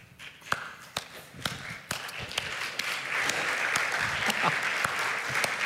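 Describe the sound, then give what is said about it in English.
At an evening church service, scattered, uneven claps from the audience after a prayer start sparse and hesitant, a few sharp isolated hits, then gradually fill in to a steadier patter of applause from a group. “Okay, some of y'all didn't know whether to clap or not, so like, can we say thank you to the worship team for leading us in worship today?”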